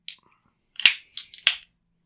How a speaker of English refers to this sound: Now let's crack open a cold beer and let's get after it.